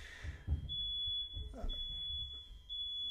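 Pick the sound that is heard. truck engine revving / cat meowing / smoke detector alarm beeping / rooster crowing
smoke detector alarm beeping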